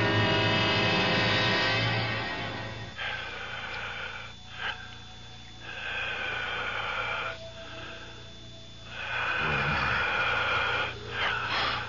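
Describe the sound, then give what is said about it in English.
Slow, heavy breathing fills the space: long rasping inhales and exhales alternate in a steady rhythm, loud, with a wheezy, hollow edge and no voices. “It sounds like the whole room is breathing. I can hear it breathing.”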